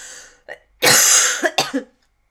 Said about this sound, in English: you have to excuse me, I've got a cough.